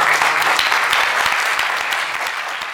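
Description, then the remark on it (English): An audience at a church service claps steadily together for Jesus, a dense wash of many hands with sharp overlapping slaps, loud throughout and tapering slightly toward the end. “Clap for Jesus.”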